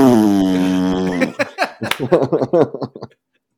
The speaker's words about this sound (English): I'm just going to get that Bob Burgers fart gun. That's the only sound.